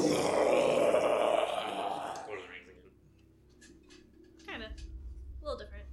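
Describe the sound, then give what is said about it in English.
A loud, guttural monster roar made by a human voice, imitating a giant mass of tentacles and gore bursting out of a pile of bones, lasts about two seconds, then fades into quieter breathy grunts and murmurs. “The pile of bones over to the west starts to quake, and then boom, it explodes, and this giant mass of wreathing tentacles and gore and bloody mess jumps out from these bones and roars.”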